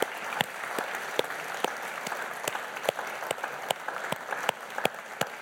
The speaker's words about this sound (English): Ha. Let's clap for Jesus, amen? Let's clap for Jesus.